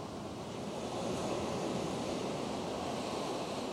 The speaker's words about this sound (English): Just listen to the calming waves as you feel the warmth.